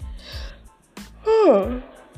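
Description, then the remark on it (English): A person lets out a single drawn-out yawn because it is getting late, voiced and sliding downward in pitch, louder than the brief breathy vocal sounds just before it. “Excuse me, I'm yawning because, you know, it's getting late.”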